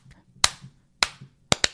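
Sharp hand claps ring out in a syncopated pattern in a rock song: single claps, then a quick double, loud over a faint low rhythmic backing from a band.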